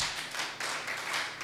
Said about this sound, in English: Oh, if you are clapping, clap to the Lord.